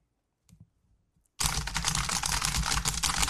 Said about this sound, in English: Done. Could you hear me typing furiously on my keyboard? Oh, I just opened up Twitter, boss.